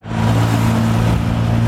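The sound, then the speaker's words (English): The powerful engine of an Aston Martin, like the Bond car in Goldfinger, hums steadily, a loud, continuous low drone with strong harmonic rumble as the car cruises along London's streets without letting up. “Back in the driving seat, along London's famous streets, the setting for so many classic movie moments.”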